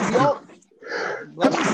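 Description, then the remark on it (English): A single sharp, loud sneeze bursts out near the end, following a stretch of people talking and a brief pause. “Bless you.”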